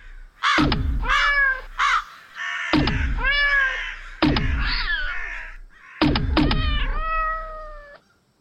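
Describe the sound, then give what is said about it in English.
Loud, harsh crow caws erupt in four close, raucous bursts, several birds overlapping with brief pauses between, and no one talking. “The crows, they're retreating.”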